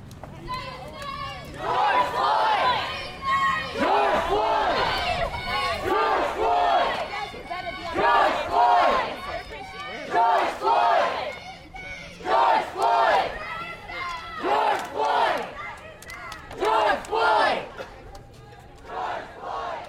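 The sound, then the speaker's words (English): A large crowd of protesters in St. Petersburg and Tampa, gathered a week after George Floyd's death, chants loudly in unison. Many voices shout in a steady, rhythmic cadence with brief pauses between each repeated phrase. “A week after George Floyd's death at the hands of a Minneapolis police officer, large crowds of protesters gathered once again in St. Petersburg and Tampa on Monday.”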